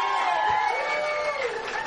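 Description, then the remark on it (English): An audience at a comedy show applauds and cheers steadily, a dense wash of clapping with scattered whoops rising above it, holding at a constant, fairly loud level throughout. “A round of applause”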